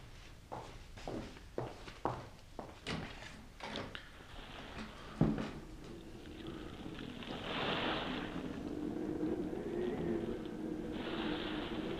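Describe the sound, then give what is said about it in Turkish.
A few scattered footsteps and clunks give way to a swelling, steady wash of sea waves as the wind picks up, rushing and hissing loudly through the second half. “Yağmur mu yağıyor? Denizin sesi. Rüzgar hızlandı. Tıpkı yağmur gibi.”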